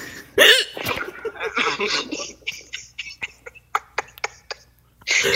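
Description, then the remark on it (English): A sharp, high gasping hiccup bursts out, shriek-like, followed by a run of quick breathy catches and clicks, then another loud gasp at the end, fairly loud. “It's almost like a shriek. It's like a gasp.”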